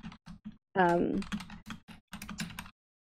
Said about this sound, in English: I hear typing.